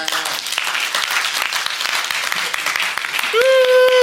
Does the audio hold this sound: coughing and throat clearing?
no